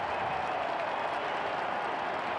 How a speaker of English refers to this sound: I listen to the crowds.